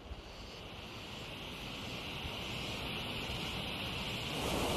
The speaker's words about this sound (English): It's absolutely breathtaking, as you can see. The mist, the waterfall behind me, it is just absolutely elegant.